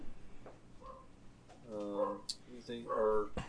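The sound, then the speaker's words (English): A pup vocalizes in a few drawn-out, tonal whines and groans, two longer ones standing out near the end, moderately loud. “Sounds like the pup's ready to be done too.”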